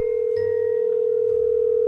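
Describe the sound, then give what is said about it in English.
A phone call ringing out as a radio show calls a listener's best friend for KIISMAS giving: one steady, loud mid-pitched ringback tone holds unbroken for about two seconds, with a faint low hum beneath it and no voices. “We're calling Stephanie right now.”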